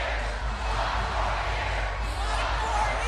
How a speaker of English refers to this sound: Man, that's awesome to have that crowd chanting for you that way. And you can hear her as she's starting to realize what it is the crowd is starting to chant.